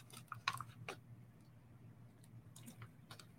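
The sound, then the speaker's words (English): Someone gulps a drink of water, with a few soft wet clicks and swallowing sounds spread over a few seconds, quiet and with no talking. “Just pardon me, I'm going to take a gulp of water.”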